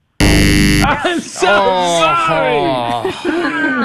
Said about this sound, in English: Did you just notice how quickly he was on that buzzer? He was just like raring to go.